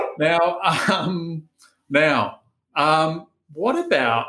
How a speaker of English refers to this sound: So, so Gus, my dog, is a bit upset about something, but we'll just keep going on.